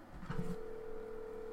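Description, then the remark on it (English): A steady electronic ringing tone of an outgoing phone call, coming out of a watch's speakers, holds at one pitch after a short clatter and continues unbroken to the end, fairly quiet with no one speaking. “Let's see if this rings. I'm ringing you.”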